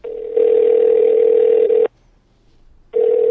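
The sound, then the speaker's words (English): A loud, steady telephone line tone hums for nearly two seconds, cuts out for about a second of near silence, then starts again as a phone call is placed. No one speaks. “Sure, let's give him a call.”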